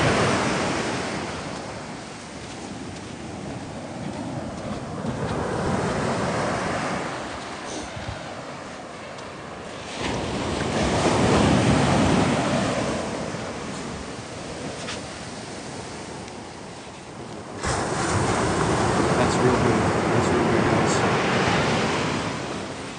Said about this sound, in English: Ooh, look at that. Let's get you some good sound there close to that ocean. Here we go. Ooh, that's close. Super close. I'm going to back up a little bit.